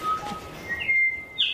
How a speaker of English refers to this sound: on the last night, as the first bellbird starts calling, you get the holy grail.